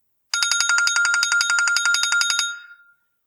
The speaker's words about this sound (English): His private cell phone rang.